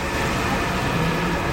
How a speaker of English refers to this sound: Now, that was a mail truck. I can see now why they want electric mail trucks. That was loud. That was loud.